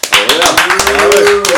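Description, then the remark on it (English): A small group at a live broadcast claps in loose, uneven bursts for a second or two, the sparse claps fairly loud, with a sustained voice carrying underneath. “What's a clap? I think there's more than just the five of us in here.”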